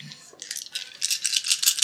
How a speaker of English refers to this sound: 4 dice. Oh, yeah, so roll that. Sorry, yeah. And you need successes, yeah.